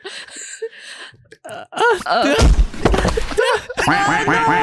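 A flock of ducks quacks in loud, overlapping bursts, building from scattered calls into a dense, chaotic clamor, with a brief lull before the noisy chorus resumes.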